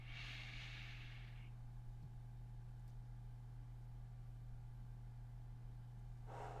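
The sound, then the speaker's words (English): A slow, deep breath drawn in, held for a moment and released during a guided breathing exercise, over a steady low hum with no talking. “Breathing in the hope and possibility of this new year, of this day.”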